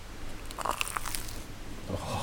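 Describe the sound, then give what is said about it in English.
A crunchy bite into a deep-fried sausage, with a burst of crisp, crackling snaps followed by softer chewing sounds, no talking. “It's going to be a good crunch as well.”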